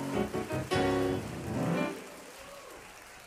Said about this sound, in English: If you believe that, clap your hands and give God praise in this house. Come on, really give him high praise in this place.